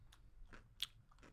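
Loud, wet crunching and chewing of a pickle, several sharp bites and munches in quick succession, with no talking.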